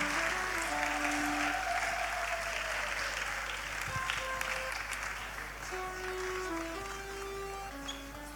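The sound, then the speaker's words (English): A church audience claps steadily as the Sunday school children and choristers come forward for the anthem. It is a dense, continuous wash of applause with no pauses, while faint sustained tones, likely an organ or keyboard, play softly underneath. “Let us clap for us, they are coming.”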